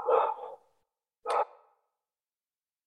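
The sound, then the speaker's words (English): A dog barks three times: a longer first bark, a sharp second about a second later, then a brief clipped yip at the end. “It sounds like your dog has thoughts on this topic.”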